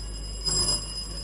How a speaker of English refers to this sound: In this round, I'm going to be presenting you with the questions at the same time. For an opportunity to answer a question, you must ring for it. May I hear your bell, Okokuwari School? Thank you.